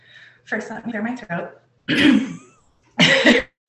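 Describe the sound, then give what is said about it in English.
Someone clears their throat several times: a few short, gravelly grunts followed by two louder, harsher rasping bursts, separated by brief pauses. “First, let me clear my throat.”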